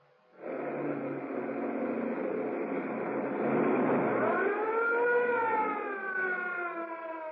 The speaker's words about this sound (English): Threading their way at breakneck speed through the narrow streets around the waterfront, the police car follows the fleeing sedan. So fast is the pace of the police car, it smashes into the rear fender of the sedan before it can be stopped.